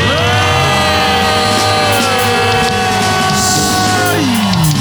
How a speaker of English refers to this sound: Somebody scream and bless God.